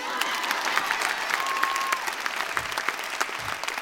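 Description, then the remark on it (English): A crowd applauds steadily for a few seconds, a dense patter of many hands clapping at an even level, with a faint whistle-like tone briefly cutting through midway. “It is extremely, you can clap for that.”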